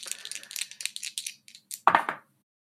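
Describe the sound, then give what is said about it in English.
Dice clatter and rattle across a hard surface in a quick series of sharp clicks, ending with a louder cluster of knocks before settling into silence. “If the dice will allow me to.”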